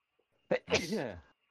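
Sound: sneeze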